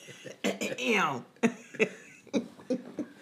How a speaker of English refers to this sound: Did you clear your throat?